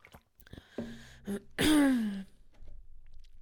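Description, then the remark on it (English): Someone takes a quick drink of water from a bottle, with a few small clicks and a gulp, followed by a short, loud, voiced exhale, then quiet handling noise. “I'm trying to drink more fluids. In fact, I'm going to have some right now.”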